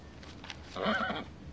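A horse lets out a single short whinny, its shrill, quavering pitch rising and wobbling for about half a second before cutting off, heard alone against a faint background.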